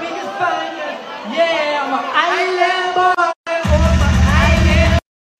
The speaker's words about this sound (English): Like the crowd started to get loud.